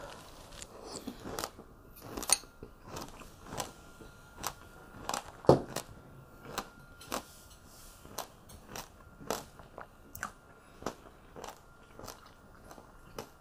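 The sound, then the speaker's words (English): Someone chews pomegranate seeds chilled in the fridge, a long run of sharp, crisp crunches and wet bites in an uneven rhythm, with a few louder snaps, and no talking. “pomegranates. So juicy. And I pulled these out of the fridge just before our live stream, so they're nice and chilly and cold.”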